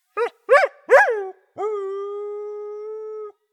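A three-legged dog gives three quick, rising yips and then holds one long, steady howl, loud, with no voices around it.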